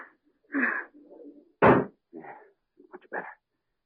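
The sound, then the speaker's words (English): A door being opened: soft rattling handling noises, then one sharp, loud latch clunk, followed by quieter scrapes and a couple of small clicks. No one speaks. “Here, this door opens.”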